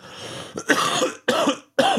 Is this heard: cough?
yes